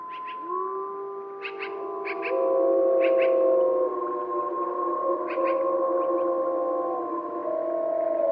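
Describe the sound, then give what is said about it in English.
A chorus of wolves howls together at night, answering a wolf biologist's imitation howl, several long, drawn-out voices overlapping and sliding in pitch. Faint insect chirps pulse in the background. No one speaks. “I thought it was the wolf. They started howling right away.”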